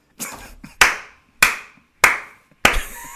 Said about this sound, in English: Nigga really hit the slow clap. It's funny because it was silent too. Exactly. But there's no audio. His mic just deaded the whole clap.